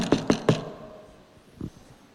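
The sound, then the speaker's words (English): Three quick, sharp knocks on a wooden door in an even rhythm, fairly loud, followed by a softer single thud a moment later. “I'd rather confront you now and confront these guys now than it's a knock on the door.”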